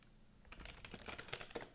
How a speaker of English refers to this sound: Do you know what I hate? Yeah. When someone types on the keyboard.